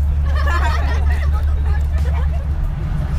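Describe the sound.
Overlapping voices of many passengers murmur and chatter throughout, layered over a steady, deep engine rumble, like riders talking inside a moving bus.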